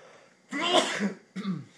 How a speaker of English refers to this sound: excuse me. I don't know where that sneeze came from.